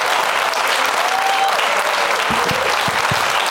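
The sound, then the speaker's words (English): Loud, steady applause from an audience welcoming Roy Wood Jr., Ian Bagg and Randy Baumann out, a dense wash of clapping that holds at full level throughout, with a few whoops and low thumps mixed in near the end. “Please give it up for Roy Wood Jr., Ian Bagg, and Randy Baumann.”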